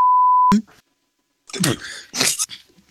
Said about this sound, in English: You beeped.